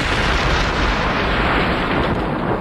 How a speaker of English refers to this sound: The Port Chicago Naval Munitions Port was to help provide support for our war efforts in the Pacific Theater in World War II. The base was opened in 1942. 2 years later, a massive explosion devastated the base.